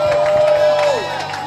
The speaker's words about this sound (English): For the Lord, clap your hands and give the Lord a shout of praise.